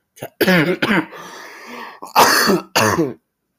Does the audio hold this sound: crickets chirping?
no